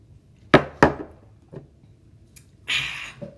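Two quick, bright clinks of shot glasses tapping together in a cheers toast before a first shot, a softer knock a moment later, then a short breathy hiss. No voices are heard.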